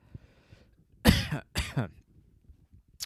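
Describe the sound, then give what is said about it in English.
Two harsh, raspy coughs in quick succession from a person who has been smoking, fairly loud, with quiet background noise before and after and no talking. “Anyway, I feel like people cough more. I just don't cough that much.”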